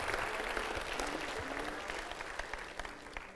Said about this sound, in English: Would you give them a hand clap, church? Come on, this is what this is all about.